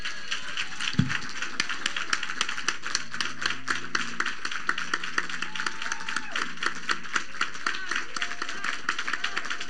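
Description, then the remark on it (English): An audience claps for people standing up as recovered from drug addiction, a dense, continuous patter of many hands at an even rhythm, with faint voices and some low tones underneath. “If you recover from any kind of drug addiction, I want you to stand to your feet. Come on, y'all. Let's go. Clap.”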